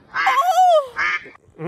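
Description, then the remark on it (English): A duck quacks three times in quick succession, loud: two long, nasal, buzzy quacks, then a third cut short at the end. “There were ducks crossing the road.”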